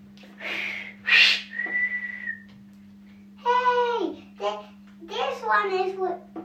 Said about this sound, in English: No smoking at the pool. Blow the whistle.